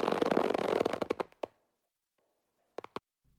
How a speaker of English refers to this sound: I was going to say, is there somebody running down the road farting, but I didn't think that would be appropriate on our show.